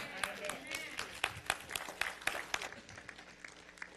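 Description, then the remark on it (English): An audience breaks into scattered applause, irregular sharp claps rising and falling at a moderate level, with a low murmur of voices beneath them. “I'm looking at who applauded that.”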